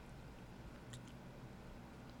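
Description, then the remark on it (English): Quiet chewing of a crunchy Kit Kat chocolate wafer bar, with a few sharp crunches near the middle over a soft steady background hiss; no one speaks. “I think I'm going to go Kit Kat. Hold on. Let me chew.”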